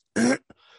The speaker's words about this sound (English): excuse me. Still haven't shaken off that cough. That's not COVID, by the way. I've been testing myself 3 times a week. It's just the residual effects of bronchitis.